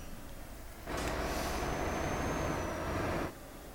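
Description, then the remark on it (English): Steady road rumble from inside a moving car abruptly swells into a loud, hissing roar for about two seconds as it passes under a bridge, then drops back to the quieter drone. “Driving under a noisy bridge.”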